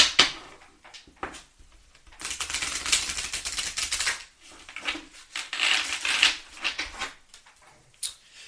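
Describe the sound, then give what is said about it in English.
A few sharp knocks on an oracle card deck, then a long stretch of brisk riffling and shuffling of the cards, fairly loud, with brief pauses between bursts. “So, I had to knock on the deck and do this.”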